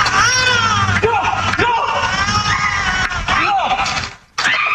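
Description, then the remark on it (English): A woman screams loudly and continuously in high-pitched, strained bursts for several seconds during a coyote attack, with other raised voices mixed in beneath, then a brief break before the screaming resumes. “She's just sitting there screaming.”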